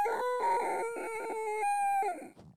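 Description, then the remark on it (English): A voice imitates a rooster crowing: one loud, drawn-out cock-a-doodle-doo call with a high, strained tone and a few broken syllables, fading out at the end. “A rooster like waking you up.”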